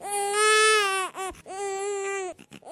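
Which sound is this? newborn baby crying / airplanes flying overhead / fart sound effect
newborn baby crying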